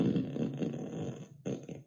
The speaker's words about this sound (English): Try asking me for a long and crispy fart. Or say random. Long and crispy fart. Here comes a long and crispy fart.